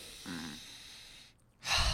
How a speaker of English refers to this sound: So, breathing time, all right? Everybody, we're all going to take one collective breath and pace ourselves, okay?